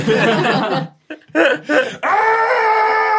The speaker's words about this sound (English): I immediately scream.